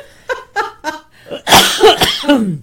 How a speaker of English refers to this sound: I knew as soon as I swallowed it that I was going to have to cough.